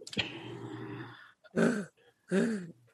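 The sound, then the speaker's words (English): A voice imitates a loud, rough snore: one long rasping drone, then two harsh, throaty snorting bursts in quick succession, with no talking. “It's not gonna be a gentle it's gonna be we're trying to turn on a freaking lawnmower snore.”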